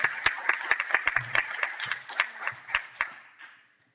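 An audience applauds with a burst of many overlapping hand claps, sharp and steady at first, then thinning out and fading away to quiet within a few seconds.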